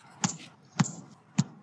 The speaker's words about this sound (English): I hear someone knocking.